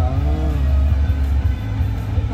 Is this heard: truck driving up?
yes